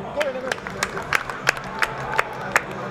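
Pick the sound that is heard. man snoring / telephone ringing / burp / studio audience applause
studio audience applause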